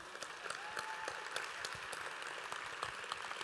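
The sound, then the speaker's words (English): A crowd claps steadily for a group of grandmothers, many overlapping hand claps forming a dense, even wash of applause with sharp individual cracks poking through; no one speaks over it. “You won't clap for them, you are sitting down.”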